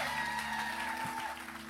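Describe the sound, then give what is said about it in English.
A church audience claps steadily, many hands blending into a dense, even wash of applause that holds at a fairly constant level for the whole stretch, with a faint organ-like tone humming underneath. “Give him a real hand clap today.”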